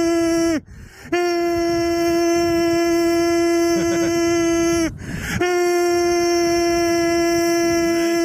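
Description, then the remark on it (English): A tornado siren holds a loud, steady, buzzy tone, briefly dropping and swooping back up twice before continuing its unbroken wail. “The very good tornado siren.”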